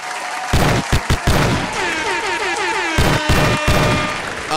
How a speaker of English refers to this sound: Last week, I didn't get to record because it was my boy's birthday. Oh, shout out. Hold on, let me get some hand claps.